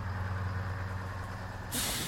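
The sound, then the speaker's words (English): A bus idles with a low, steady engine rumble, then a loud burst of air-brake hiss erupts near the end. No one speaks. “Oh, God, I forgot I didn't drive today. Okay, wait for the bus.”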